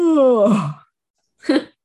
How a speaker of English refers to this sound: Ooh, sorry, not my yawn.